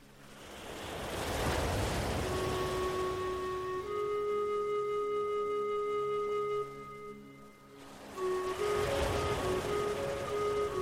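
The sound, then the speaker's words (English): Gentle ocean waves roll in and wash onto a sandy beach shore, swelling twice with a quieter lull between, while soft sustained musical tones hum steadily underneath. “Feel what it would be like to imagine that you are standing barefoot on that beautiful, safe beach, looking out over the gentle ocean waves as they roll towards the sandy shore.”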